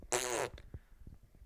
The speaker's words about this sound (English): Hiss. Farts.